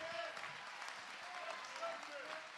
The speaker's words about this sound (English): Clap your hands and give them praise.